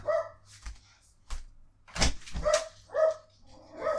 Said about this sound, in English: Oh, the dogs are going just completely apeshit back there.